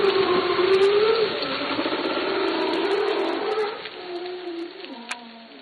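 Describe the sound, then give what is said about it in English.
A long, moaning underwater whale call glides up and down in pitch over a steady murky hum, fading slightly toward the end with a brief click near the close. “Some of it comes from wildlife, like whales or porpoises.”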